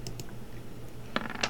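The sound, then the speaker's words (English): A d20 die is rolled for a strength check and tumbles across a tabletop, giving a few light, sharp clicks spaced apart before it settles. The clatter is quiet, with no voices. “Roll a strength check, my dude. Which dice? D20.”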